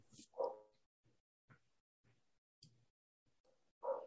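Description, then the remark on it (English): Dogs barking: two stronger barks about three seconds apart, with a few softer, shorter barks or yips scattered between them. The whole scene is faint, and nobody speaks. “Can you hear the dogs barking in the background?”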